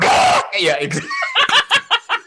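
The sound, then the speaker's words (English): A person imitates an eagle's cry: a harsh breathy burst, then a wavering, screechy call sliding in pitch, followed by a short run of rhythmic, chuckle-like pulses. Fairly loud. “I don't know what an eagle sounds like. It doesn't matter. Let me see if I can do this.”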